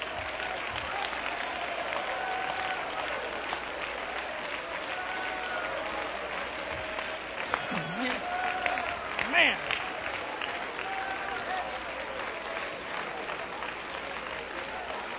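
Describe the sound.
An audience at a worship service claps continuously, a dense, steady wash of hand claps filling the space for the whole stretch, with voices calling out faintly underneath as they shout hallelujah to the Lord.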